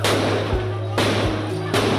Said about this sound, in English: There are fears Myanmar is spiralling towards a protracted civil war after a weekend of deadly violence at the hands of the military junta. Gunfire rings out as protesters scatter.